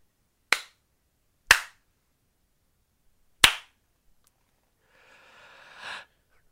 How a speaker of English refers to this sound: slaps and snaps. All right. Give me what you got.